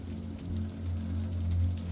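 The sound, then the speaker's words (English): Soft, steady rain patters and trickles against a window, a continuous gentle wash with faint droplet ticks over a low, constant hum. No voices. “Blackout drapes made of thick linen in your favorite colors block out the city lights and all the sounds but for the trickle of rain down the window.”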